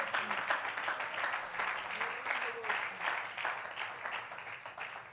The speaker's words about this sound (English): Oh, will you clap your hands and love him tonight? Come on, let's praise him.